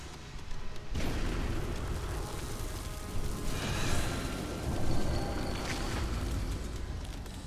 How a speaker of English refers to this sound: But after a moment, he is upon her, and they tumble off the plate, blasts of elemental energy crashing over and over.